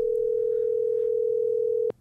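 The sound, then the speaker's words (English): A steady, unbroken telephone dial tone hums at a single mid-low pitch for about two seconds, then cuts off abruptly with a brief click. “All right, dial.”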